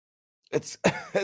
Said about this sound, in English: It's just a cough, captain.